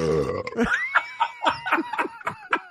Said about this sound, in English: But then that burp is so low from the depths of the Dungeons and Dragons.